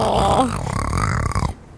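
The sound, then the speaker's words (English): A voice imitates a big bear-like snore: one drawn-out, throaty rasp lasting about a second and a half, then cutting off into quiet. “Like big snores. How? Like big bear snores.”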